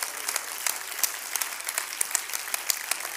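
An audience claps their hands, many overlapping claps forming a dense, steady wash of applause with sharper individual claps popping out, at a moderate level with no voices.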